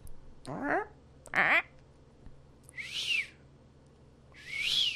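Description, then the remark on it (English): A person mimics their pet bird, first with two short voiced chirps, then with two longer, breathy, high-pitched whistles, each rising and falling, fairly loud with pauses between. “But there is definitely just a bird language that we also throw in. We mimic our birds.”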